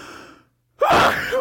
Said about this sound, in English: Jeez, you didn't even say bless you. That was a dramatic sneeze.